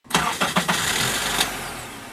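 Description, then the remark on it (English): The car of Miami-based artist Franky Cruz, which sometimes doesn't start, cranks over in a few quick, labored turns, then sputters to life and settles into a steady rumble, with no talking. “His car, that sometimes doesn't start.”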